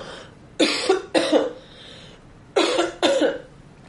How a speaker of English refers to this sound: I'm almost out of my coughs. She's dying on me. I am.